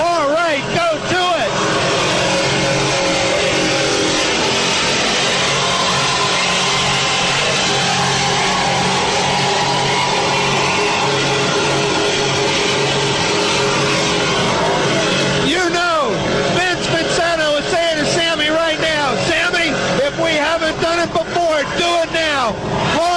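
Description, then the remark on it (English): Three offshore powerboats, Longshot, Vincenta and Famous Shoes, racing on a circuit, their engines a loud, steady, rasping roar throughout, with the pitch wavering and shifting in the final stretch. A voice can be heard talking over the engine noise. “This is offshore powerboat racing at its best. Three boats.”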